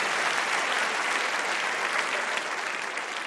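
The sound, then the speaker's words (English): Sustained audience applause for the participants of a debate, a dense, steady wash of many hands clapping at an even loudness for a few seconds, tapering only slightly at the end with no voices over it. “I'd like to give a round of applause to all of them.”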